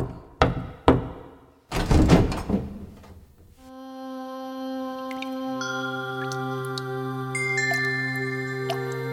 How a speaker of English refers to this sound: Pratikami, Duryodhana's attendant, entered the inner quarters of the palace. He walked up to Draupadi's room and knocked on the door.